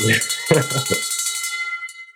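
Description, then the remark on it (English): A victory bell is rung to celebrate a closed real estate deal, a bright, sustained metallic tone that slowly fades, while voices cheer over the first second of the ring. “And you net how much on this deal so I can ring this victory bell?”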